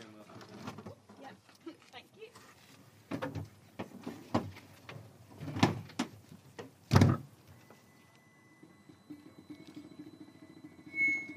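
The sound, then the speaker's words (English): A small solar-powered car squeaks and rattles with a few sharp clunks, then settles into a thin, high whine as it pulls away down a racetrack, with voices talking in the background. “As Amy and the solar-powered car, Evolution, squeaked off down the racetrack”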